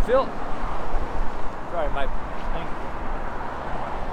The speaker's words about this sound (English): Windy. I'm outside. I'm not in some church building.